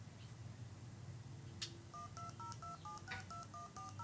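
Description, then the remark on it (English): A rapid series of about ten short dual-tone keypad beeps, each pair of steady pitches sounding briefly with small gaps, as a program plays the keypad tones of a phone number being dialed, over a low background hum. “Okay, so that's the number being dialed.”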